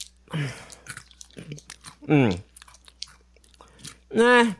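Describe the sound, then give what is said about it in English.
Crisp crunching of Cheddar Jalapeno Crunchy Cheetos snacks being chewed in irregular bursts, with muffled voiced sounds and brief vocal noises in between. “For Cheetos, Cheddar, Jalapeno, Crunchy Snacks, 21 is the right amount of fun for jalapeno hopping fun.”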